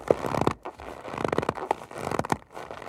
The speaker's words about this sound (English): Fortunately, there are other ways to make snow sounds. To get a really good crunch, they'll scrunch up a bag of cornstarch.